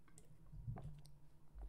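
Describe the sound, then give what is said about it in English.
Someone quietly sips a drink, with a few soft wet clicks and a faint slurp over a low steady hum. No one speaks. “Let me just take a sip of this.”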